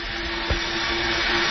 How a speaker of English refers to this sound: Ah, so there you hear the blender in the back and you know it's real.